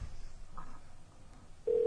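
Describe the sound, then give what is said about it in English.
A telephone line rings on an unanswered call, with a faint brief tone early on and then a loud, steady ringback tone starting near the end, with no one talking. “He won't answer. He never answers.”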